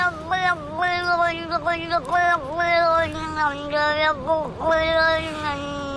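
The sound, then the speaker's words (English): A cat named Big Wet Billy meows in a nonstop, talkative stream, its voice sliding up and down in pitch like chatter, loud for several seconds. “It's Talking Cats.”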